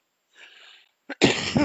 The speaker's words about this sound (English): Both of us coughing. It's the weather.